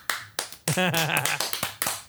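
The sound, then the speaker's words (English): Hands clap in a loose, fairly steady rhythm, seven or eight sharp, bright claps over two seconds, with a short voiced sound briefly overlapping the middle of the applause. “Are you clapping?”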